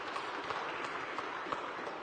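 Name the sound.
audience applauding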